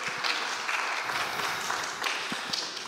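A crowd applauds steadily, a dense, even wash of many hands clapping at moderate loudness with no voices standing out, sustained for the whole stretch.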